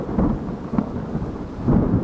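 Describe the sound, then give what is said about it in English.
Heavy, steady rain pours down in a dense wash of noise, with low rumbles of thunder rolling underneath and swelling in brief bursts. No voices are present. “Everything was dark, and I could hear the heavy, unending downpour of the rain continuing.”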